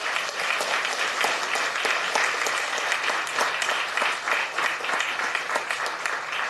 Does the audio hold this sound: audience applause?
yes